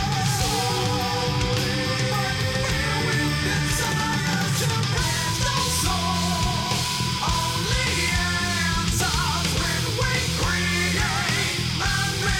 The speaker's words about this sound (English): That's the backing scream. I'm a big fan of that.